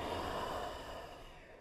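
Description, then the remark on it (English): A long, deep exhale during yoga breathing rushes out as a steady, breathy hiss that slowly tapers off over about two seconds, with no talking. “Breathe in, breathe out,”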